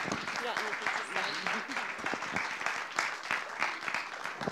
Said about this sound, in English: Thank you, Frog Club, for being with us. Isn't it good to hear what God's doing? Let's applaud these guys as they go.